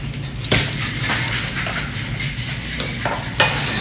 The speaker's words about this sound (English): And then you're going to shake it, and you're not going to strain it. You're going to dump it into the final glass. Are you straining with this? No straining at all with this drink. You're going to shake it in that mixing glass. Flip it over.